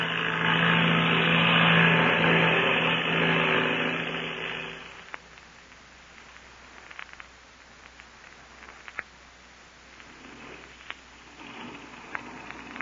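An airplane engine drones loudly and steadily for about five seconds with a low humming tone, then drops away, leaving faint hiss and scattered soft clicks.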